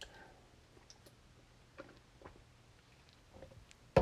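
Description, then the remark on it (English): Someone takes quiet sips of water, with faint wet clicks and small slurps scattered over a few seconds, then a sudden louder knock right at the end. No one speaks. “Excuse me while I take a sip of this H2O.”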